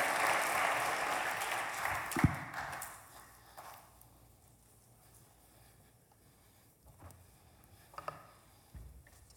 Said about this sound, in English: Let's give them a round of applause once again.